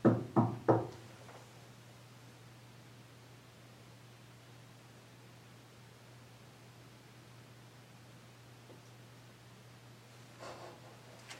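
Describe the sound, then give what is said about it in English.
Three quick, sharp knocks sound close together at the start, then give way to a long stretch of steady low hum and hiss, with a faint soft thump near the end. “If there's someone back here, can you just go ahead and knock on something three times for us?”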